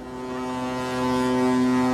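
A ship's horn sounds one long, deep, steady blast as a boat leaves the harbor on a Norwegian shipping route, swelling slightly louder midway, its low droning tone filling the whole moment with no voices present.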